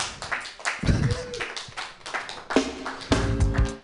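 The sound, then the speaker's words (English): A stand-up comedy crowd gives itself a round of applause, clapping in a steady, dense patter of hand claps for several seconds, with some cheering and voices mixed in toward the end. “Okay, give yourselves a round of applause.”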